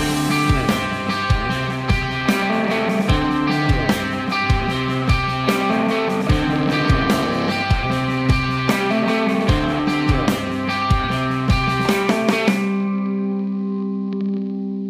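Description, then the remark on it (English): A distorted electric guitar played through an Old Blood Noise Endeavors overdrive distortion pedal plays a gritty, overdriven riff over a steady drum beat for about twelve seconds, then lets a final chord ring out and fade. “Fault this is overdrive distortion.”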